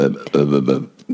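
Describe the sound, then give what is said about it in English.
A loud burp rumbles out in a few guttural pulses over about a second, deep and throaty, with no talking around it. “Now, see, that's the kind of burp I thought I was going to have.”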